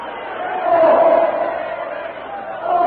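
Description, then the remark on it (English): A crowd screams in panic as elephants charge through it, a dense, loud wall of overlapping voices that holds steady throughout, with a shrill wail cutting above the din early on and again at the end. “Followed by the other elephants who have tossed their riders aside, the jungle titan lunges through the screaming, panic-stricken crowd straight toward the ape-man.”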